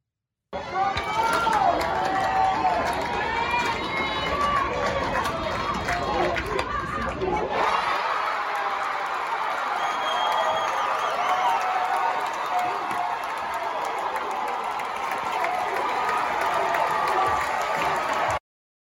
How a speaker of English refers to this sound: First of all, just looking at the video by itself, the noise, how much the crowd is into it, the women on this team so fired up for their pitcher who took this game away.